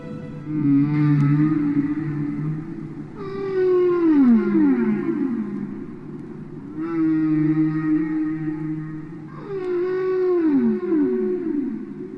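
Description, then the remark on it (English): Song of male humpback whales underwater, from a 1970 recording: long, moaning tonal calls that swoop and slide in pitch, repeating in a slow phrase cycle of about four units, loud and continuous with no talking. “The ability of male walruses to create new songs over time is reminiscent of the most famous underwater singers in the ocean, male humpback whales.”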